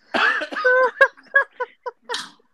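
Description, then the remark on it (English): Someone clears their throat with a voiced, rasping rumble, then lets out several short, uneven coughs in quick succession, ending with one harsher hack. “Look, I'm over here. I had to get a cough drop.”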